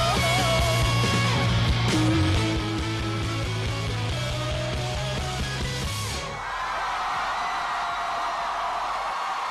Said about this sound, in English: Yeah, I love that song. I mean, right at the end of the song, but we got the crowd cheering.